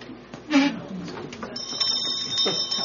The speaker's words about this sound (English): How about the Vater Unser bell?